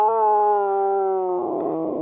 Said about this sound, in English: I think I heard a werewolf, Steven, outside during that song. I did. I heard the howl.